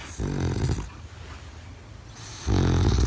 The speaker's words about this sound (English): But she had another dog that I think she looked after called Lady Penelope Popcorn, a.k.a. Poppy. I was going to say, that dog must be like, please call me Poppy. I can't go by this Lady Penelope Popcorn rubbish. And that dog used to snore like this.